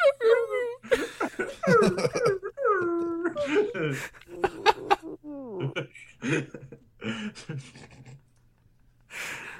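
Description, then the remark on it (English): A voice imitates a seal with strained, wavering yelps and whines that sound like a dying dog, rising and falling in a series of loud bursts before trailing off into softer sounds. “It had to be a seal, but it came out wrong. I thought it was a dying dog.”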